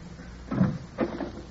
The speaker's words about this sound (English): The curtain rises on the living room of a country cottage in England. It's mid-morning, and Mrs. Minette, the housekeeper, is opening the door for some early visitors.